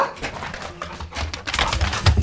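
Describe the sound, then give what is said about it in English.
A dog waiting outside an office door whimpers and gives a few short barks, the sounds growing louder and more insistent toward the end, with no one speaking. “once I see the dog coming in, that's when I'll toss the food”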